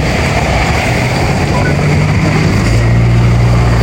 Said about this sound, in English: And we're standing here with some cars about to come past